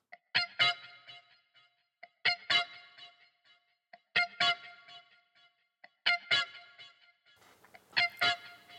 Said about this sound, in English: So to get it closer to that sound, I put some more effects on the guitar, some delay, probably some reverb too, and I got this.